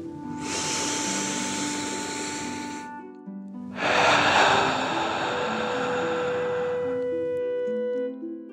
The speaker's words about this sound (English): Breathing in through your nose and breathing fire out your mouth. Again, deep breath in and out.